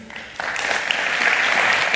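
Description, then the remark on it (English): An audience bursts into applause for an absent honoree, Carlin Freeman, a dense wash of clapping that starts suddenly and holds steady at a fairly loud level for the rest of the moment. “Carlin Freeman is not here today, but we can still give her a round of applause.”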